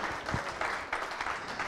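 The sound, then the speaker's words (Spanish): A church audience claps their hands in praise to the Holy Spirit during a service. The applause is a steady, dense patter, moderately loud, with no voices standing out. “Dele palmas al Espíritu Santo en esta hora.”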